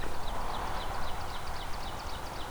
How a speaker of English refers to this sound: So as you might be able to hear there is oven birds here. That's another warbler species here.